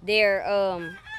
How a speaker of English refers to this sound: Those chickens right there are the ones that have the males of the group. And the other chickens are all female.